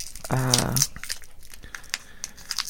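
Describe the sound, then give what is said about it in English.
A plastic wrapper of Dr. Sour watermelon chewy candy crinkles and tears open, with scattered sharp crackles continuing throughout and a brief voiced sound near the start. “Now, as I've opened up mine, what does yours look like?”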